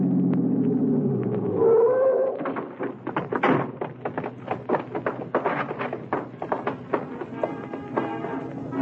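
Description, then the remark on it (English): A low engine rumble swells and fades as a car is turned into an alley leading to the stage door of the Dodge Theater at about 1:25, then a solid door thud, followed by a string of scattered taps and clicks. “It was maybe 1:25 when I hit the alley leading to the stage door of the Dodge Theater and twisted the car into it.”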